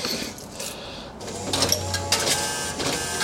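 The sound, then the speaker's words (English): A bus fare box whirs and clatters mechanically while coins drop in, each coin type giving its own tone (penny a buzz, nickel a bong, quarter a double bing), setting off a few short, high, bright chime tones over the steady rattling hum. No one speaks. “This is what we listened to as we drove the bus when the fare was 20 cents. It is a nice little melody.”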